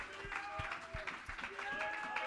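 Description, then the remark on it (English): An audience claps their hands to the Lord in praise in a steady, rhythmic beat, the claps sharp, with voices singing or calling out over and between them. “Let's clap our hands to the Lord and give God praise.”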